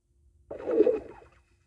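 A single underwater fart from a man sitting in a bathtub, a low, burbling gurgle of bubbles that swells and fades in under a second, heard alone without talk.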